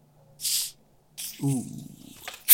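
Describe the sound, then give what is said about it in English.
A bottle is cracked open right in front of the microphone, with a short, sharp hiss of escaping gas followed by a second fizzy release, and a voice briefly reacting under the hiss. “And I'm going to open this bottle right in front of the mic.”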